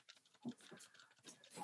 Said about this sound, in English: All you're going to hear in this podcast is me clicking my buttons.